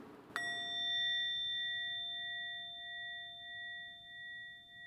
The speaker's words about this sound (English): The sound of the singing bowl, a type of bell sometimes used as part of meditation practice in Asia, and also here at San Francisco's Osher Center.